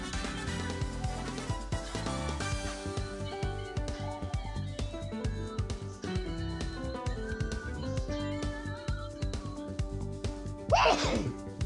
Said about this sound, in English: Pardon me while I sneeze.